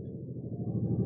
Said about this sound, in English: As you can hear, there are helicopters in the air